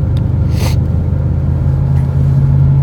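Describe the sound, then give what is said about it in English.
Inside a moving truck heading into town on a Monday morning, a steady low engine rumble runs throughout, broken once early on by a brief, airy whoosh of snow from last night's light dusting sliding off the truck. No one speaks. “I should have brushed some more snow off of my truck this morning.”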